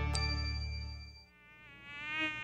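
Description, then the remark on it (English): A high, thin mosquito whine drones steadily, wavering in pitch as the insect seems to drift about, with a low hum underneath early on and no talking. “For many people, mosquitoes are just a nuisance.”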